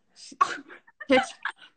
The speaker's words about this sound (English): Can you hear my dog having an asthma attack?